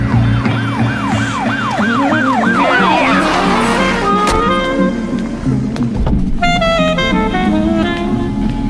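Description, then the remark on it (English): Loud police sirens fill the street: a fast rising-and-falling wail gives way to shifting, steadier electronic tones and blaring horn-like blasts, all over a constant low traffic rumble. “Miles away, they were smiling to the sound of doubt that could only be police sirens.”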